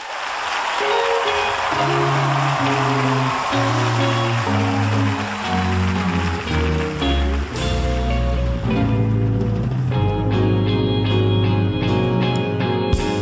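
A recorded song's instrumental intro plays loud and close, sustained bass and chord notes stepping through a slow progression over a hissy, washy texture, with no singing or talking yet.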